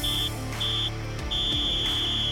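A referee's whistle blows three times over a steady crowd roar, signalling the end of a football match: two short, shrill blasts, then a long held final blast, all at the same high pitch.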